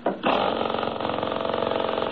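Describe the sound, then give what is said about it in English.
A short mechanical crank, then a motor catches and runs, settling into a loud, steady, rapid chugging rhythm that continues without pause. “Hey, listen to this engine run, will you? Here, I'll start it again.”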